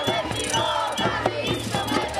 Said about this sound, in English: These young environmentalists are shouting, "We want nature, we don't want concrete." They are marching through the city center, banging pots and spoons. The protest is called, "Let's Make Noise for Nature."